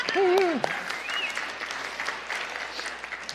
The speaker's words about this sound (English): I said, I got to beg for my claps. There we go.